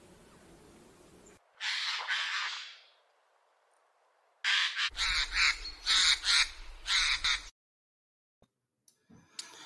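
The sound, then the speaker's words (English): Harsh, rasping screeches of a European jay: one long drawn-out shriek, then a loud run of about six rapid, grating calls, followed by quiet with faint clicks. “And that is the jays, European jays.”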